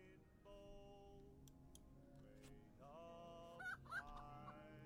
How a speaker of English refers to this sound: With the chickens in the background.